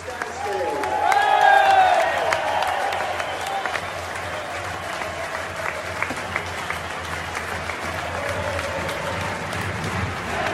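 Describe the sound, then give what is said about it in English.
A football crowd of Exeter City (Grecian) fans at St James Park applauds steadily for about ten seconds as Jay Stansfield comes on for Sam Nombe, opposite the stand named after his late father Adam Stansfield; a dense wash of clapping with early whistles and cheers, then sustained, even applause. “It's absolute pandemonium in here at the moment, as he comes on opposite the stand, named after his late father, and Grecian fans applaud him in an amazing moment.”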